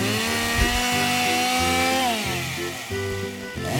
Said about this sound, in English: Now we're pretty experienced by now. This is the fourth one we've done today. I've never seen such precision with a chainsaw.